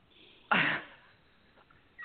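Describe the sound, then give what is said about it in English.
A single sharp nasal burst, a quick sniff and blow lasting about a quarter second, fades into near silence with a faint rustle afterward. “We're going to do three sniff and blows.”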